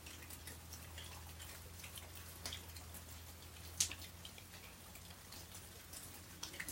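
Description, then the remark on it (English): Steady, soft rainfall patters outdoors in a continuous hiss, with scattered drops ticking on surfaces and one sharper splash partway through; a low hum sits underneath and no one speaks. “I'm opening up my pores, my very being, to this sound current of the rain.”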